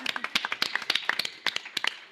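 A short burst of applause from a small group for a quiz contestant at a quiz show: irregular, crisp hand claps overlapping at a quick, uneven pace, moderately loud and steady for about two seconds, with no voices.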